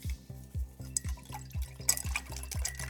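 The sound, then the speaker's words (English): Water is poured steadily into a cup, with a quick, regular series of soft glugging pulses and light splashing, fairly quiet, with no voices. “I would still technically call mine water at this point.”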